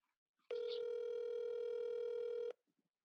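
A single steady telephone ringing tone holds for about two seconds, loud and clear, as a phone call is placed, then cuts off to near silence. No one speaks.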